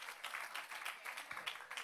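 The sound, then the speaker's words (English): A church audience gives God a hand clap, a dense, steady wash of applause, bright and crackly, with many overlapping claps sustained throughout and no clear voices above it. “Yeah, give God a hand clap.”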